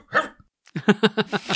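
A dog barks once, pauses briefly, then lets out a quick run of five or so sharp, yappy barks, fairly loud with no one talking.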